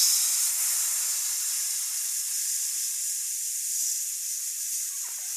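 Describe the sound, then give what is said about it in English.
A voice imitates a hiss, recorded to be layered over a buzz, pushing out one long, steady, bright breath of noise for about five seconds that stays even throughout, with no words spoken. “I'm going to record myself buzzing and hissing, and then we're going to lay it over each other and see what it sounds like.”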